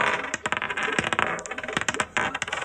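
Dice rattle and clatter across a hard surface in a quick burst of sharp, irregular clicks, fairly loud, with no talking.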